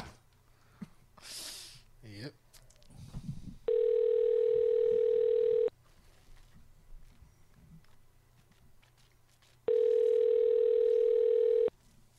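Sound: phone call ringing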